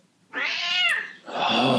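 animal, cat meowing

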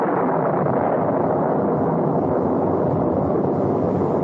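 nature, peal of thunder

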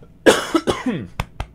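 human body sound, cough

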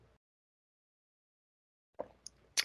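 food or drink, sipping a cocktail

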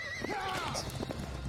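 animal, horse whinnying and hooves

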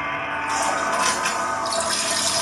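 household object, toilet flushing

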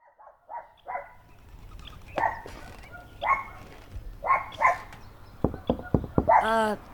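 animal, dog barking

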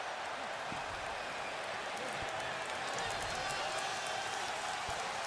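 crowd, arena crowd cheering

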